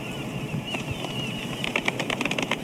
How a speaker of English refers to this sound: Golf clap. Golf clap.